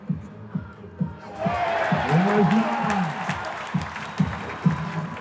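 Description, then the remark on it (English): A stadium crowd at the Home Run Derby in Cincinnati murmurs, then swells into a loud, sustained roar of cheering and applause for batter Todd Frazier, with scattered whoops rising above the din before it settles back to a busy rumble. “This crowd is...”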